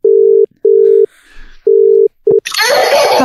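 A phone ringback tone while calling a person in the Northern Territory: a steady mid-pitched hum in short repeated bursts, the last one clipped short before a loud rush of noisy line hiss with a thin high whine takes over.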